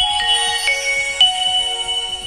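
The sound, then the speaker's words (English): A fairly new Nokia 6220 mobile phone plays its electronic startup tune clearly as it boots up: a short sequence of bright, sustained synthetic tones changing pitch every half second or so, with faint low rumbling underneath and no speech. “This is the Nokia 6220 phone.”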